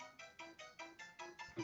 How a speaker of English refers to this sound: So yeah, this is my ringtone. Wait. It's like level 2 of Super Mario 3.